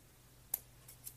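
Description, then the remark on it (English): Scissors snip the tip off something, two or three crisp, sharp cuts spaced unevenly over a quiet background with no talking. “Okay, let me just try snipping a tip.”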